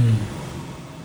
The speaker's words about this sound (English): Sorry if you hear the car passing during the day.